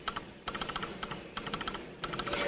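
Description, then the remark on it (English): Rapid, bright clicking taps in short irregular bursts with brief pauses between them, like fingers rattling away on a keyboard in a Morse-code-like rhythm, with no voices. “It's like he's doing Morse code, I guess.”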